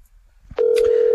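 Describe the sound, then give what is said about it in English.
After a soft click, a loud, steady telephone ringing tone sounds on an outgoing call from a radio show to its first guest and holds unbroken through the rest of the moment, with no one picking up. “And we've got someone not answering their phone, our first guest.”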